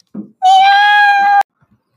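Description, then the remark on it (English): A person's voice does one long, loud, steady meow close to the microphone, imitating a cat, held for about a second after a brief soft breath, then silence. “meowing into the mic when I was gone.”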